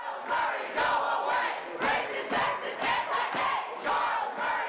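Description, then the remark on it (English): A crowd at the 2017 protest against political scientist Charles Murray chants and shouts in loud, rhythmic bursts, many voices rising together in repeated surges with brief dips between them, dense and continuous throughout. “So this was the 2017 protest against Charles Murray, an accomplished political scientist whose book, The Bell Curve, argued that blacks on average have lower IQs than other ethnic groups.”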